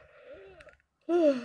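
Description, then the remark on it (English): A person breathes heavily from their lung with a voiced, groaning quality: one drawn-out breathy exhale, a brief pause, then a louder, strained gasp-like breath. No speech. “Oh, that's me breathing, that's my lung.”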